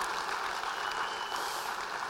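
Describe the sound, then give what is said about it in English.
A church audience claps steadily for the team and volunteers who decorated the church for Christmas, a dense, even wash of applause that holds at the same level throughout without any voices. “And can we just give a round of applause for all those team and volunteers who decorated the church.”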